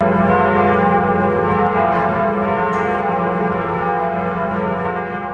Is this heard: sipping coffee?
no